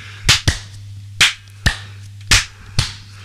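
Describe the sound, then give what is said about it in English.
Six sharp hand claps ring out in three loose pairs, each a crisp slap with no talking, over a faint steady low hum; hands clapped to sync audio after a count of one, two, three. “Well, let's just do the robotic voice again, maybe less racist, and we'll do the clapping again.”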